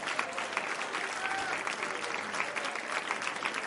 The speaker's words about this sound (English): In the name of Jesus, clap your hands to the Lord real loud.